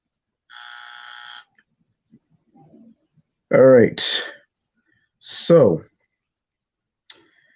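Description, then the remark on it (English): A single short, loud buzzer tone sounds at the start and cuts off abruptly, followed by a few brief, sweeping vocal exclamations and a small click near the end. “I don't know, but we're going to get into it after this buzzer.”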